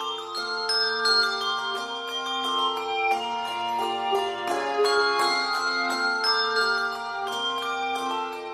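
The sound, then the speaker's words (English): A handbell choir ringing a mix of Schulmerich and Malmark bells plays a steady, flowing melody, with many bright bell tones struck in quick succession and left ringing so they overlap into a shimmering, sustained wash of chords. “This is the Sonos Handbell Ensemble, one of the few choirs that mixes Schulmerich and Malmark bells.”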